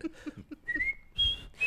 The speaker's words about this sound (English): Yeah, it's tough to cover when your song is a whistle.